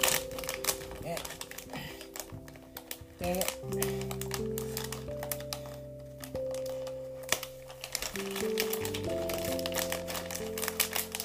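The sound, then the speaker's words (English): Busy crinkling and crackling of a plastic wrapper as a package is worked open by hand without scissors, the rustles coming in quick irregular bursts over steady background tones. “And I'm trying to figure out how to open this package.”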